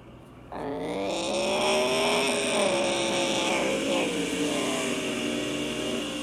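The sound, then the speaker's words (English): A loud, steady roar of stock car engines racing on a dirt track kicks in after a brief quieter moment and holds at high revs, the droning pitch wavering slightly as the cars run together. No voices are heard. “Let's get this race back going.”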